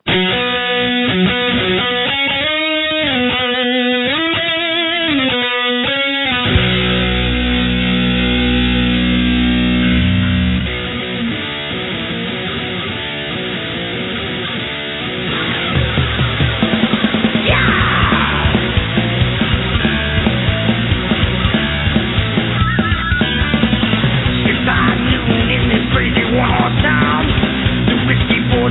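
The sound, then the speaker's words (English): A loud, distorted heavy rock song from a band's debut record opens with wavering lead guitar lines, crashes into sustained power chords, then kicks into a fast, driving beat with pounding drums. “we're going to go back to the debut record, some …”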